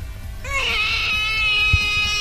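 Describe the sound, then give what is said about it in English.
A baby cries in one long, high-pitched wail that rises sharply at the start and holds steady and loud to the end, with no talking. “At number 8, we have a crying baby, which men found a lot worse than women.”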